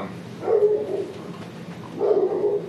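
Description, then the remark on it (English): A female dog gives two drawn-out, whiny barks about a second and a half apart, moderately loud, mixing yelps with a pleading whimper. “Oh no, my dog's back.”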